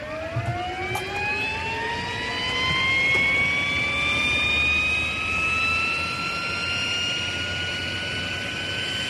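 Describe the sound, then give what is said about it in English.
An Irish Air Corps search and rescue helicopter's turbine engine whines steadily upward in pitch as it spools up while the crew scramble, layered over a constant loud roar of engine noise, with no voices. “The Irish Air Corps has been operating rescue helicopters since November 1963.”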